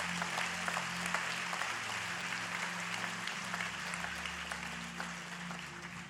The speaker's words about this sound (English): How about a round of applause for Jesus and his word?